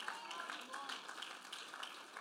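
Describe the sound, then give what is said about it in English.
Scattered, hesitant clapping from an audience during a sermon, faint, a thin patter of hands that never swells into full applause. “Everybody's real careful to clap right now because I'm preaching to where we're living.”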